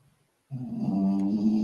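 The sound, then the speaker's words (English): Splash snores with a loud, raspy, rumbling drone that sounds like a bulldog. It starts abruptly after a brief quiet moment and holds steady, its throaty buzz rich in low harmonics. “Is that a bulldog snore?”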